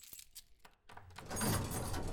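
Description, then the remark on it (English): A ring of keys jangles: a few light, scattered clinks at first, then a louder, sustained metallic rattle as the bunch is grabbed and shaken. No one speaks. “Give me those keys, big guy.”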